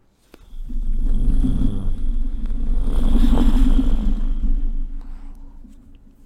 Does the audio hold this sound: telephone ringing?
no